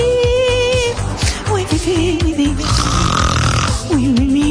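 A girl of nearly two years snoring in quick, rhythmic snorts, fairly loud, with tonal, music-like sounds running underneath throughout.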